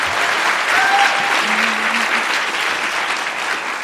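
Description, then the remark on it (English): A crowd applauds steadily, a dense wash of many hands clapping at an even, sustained loudness throughout, with a faint whistle or two poking through the noise. “I heard you guys clapping at everything.”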